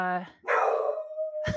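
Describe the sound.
A dog named Peppy lets out a single loud bark that stretches into a drawn-out yelp, with a brief stretch of a person's voice just before it.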